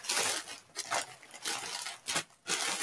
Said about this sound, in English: Here we go. Hear the crackling of the wrapping. Lucky he's a big guy. He can open those without having to get scissors. It might tear it apart, though.